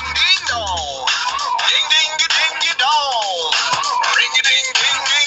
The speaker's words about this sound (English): I have the world's worst ringtone.